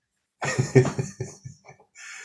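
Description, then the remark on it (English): A person imitates a crow cawing with a quick run of harsh, throaty bursts that taper off, followed by a breathy rush of air. “I get my crow sound effects come from the crow from Banana Man”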